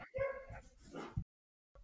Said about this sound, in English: We got dogs barking in the background.